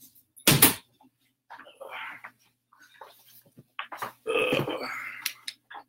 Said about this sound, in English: Sorry, guys. I had to close this door because you're going to hear all the echoing coming out of that door because my mom's talking in the other room. So I had to close that.